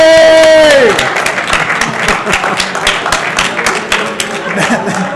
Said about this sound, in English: Why did he get a bigger applause than us? Fluffy really got the applause.